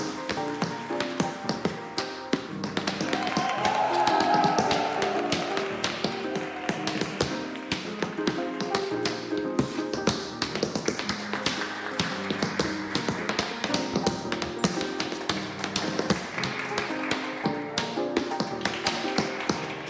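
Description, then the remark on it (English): Rapid, crisp tap-dancing steps clatter across a stage in a continuous rhythmic stream as a dancer in a top hat taps out from the wings, bright metallic clicks and heel thumps, with steady piano music underneath. “The piano fired up, and Annie Mae came onto the stage, tap dancing out from the wings with her top hat, to immediate applause.”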